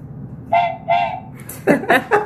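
Two short train-whistle toots in quick succession, followed by a rapid burst of brighter, wavering whistle blasts, fairly loud, with no talking over them.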